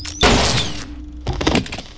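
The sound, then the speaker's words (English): Two sharp, analog-made gunshot sound effects, about a second apart, each a loud blast with a short, dull tail and faint ringing underneath. No one speaks. “And I still flinch at both of the shots, like, again, like, and the gunshots are, like, not super elaborate like the shotgun was, right?”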